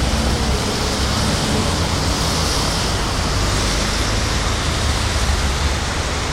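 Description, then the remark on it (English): A continuous, dense roar of road traffic streams past steadily in both directions in cold, wet weather, a broad hissing wash of tires and engines with no pauses or distinct individual vehicles, fairly loud. “There's an endless string of cars going one way, an endless string going the other way.”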